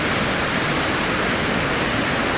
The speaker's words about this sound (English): Right, so this waterfall, it's not really a waterfall, it's a little mountain stream, which is a lie because it's not on a mountain, but usually it's just a trickle and it gets the water off the moors and into the water system.